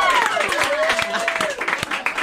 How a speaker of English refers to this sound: We would like to thank Dunkin' Donuts. Can we give Dunkin' Donuts a round of applause?